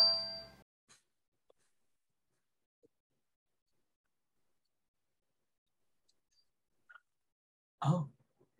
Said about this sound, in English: Oh. A gong. Boom.